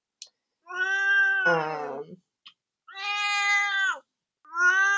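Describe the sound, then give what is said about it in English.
A male cat named Duarte lets out three long, drawn-out meows, the first bending downward at its end, separated by brief pauses and a couple of faint clicks. “And I think what he is saying is it's time for dramatic readings.”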